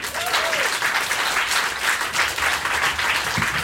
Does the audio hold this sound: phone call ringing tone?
no